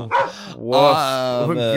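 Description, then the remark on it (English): A person imitates a dog barking: a short bark and then a longer, drawn-out one, voiced fairly loud with no other sounds around it. “And meanwhile, our company's called Forever Dog. Wow. Woof.”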